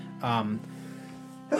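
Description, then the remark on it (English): A single short, voiced sneeze bursts out loudly, followed by a low steady hum and then the start of another loud vocal sound at the very end. “Bless you.”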